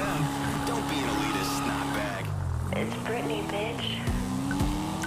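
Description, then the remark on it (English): Car engines in a video game hum and rev steadily through the whole stretch, their pitch rising and dipping as vehicles move and pass, giving a busy, continuous traffic rumble. “And it spawned me in the wrong way in traffic.”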